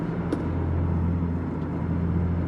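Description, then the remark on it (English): A steady, low car engine rumble drones on continuously as the car is driven, with a broad road-noise hiss above it and one faint click near the start. “Oh, man, there is nothing finer than being behind the wheel of your own car.”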